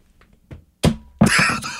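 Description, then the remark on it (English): A snickerdoodle gluten-free protein bar is thrown against a wall and hits it with a dull, heavy thud, followed a moment later by a second, louder impact as it bounces back. Sudden, with no talking. “Now, what do you think what would a brick sound like if I threw it against the wall? It would probably be like a dull thud.”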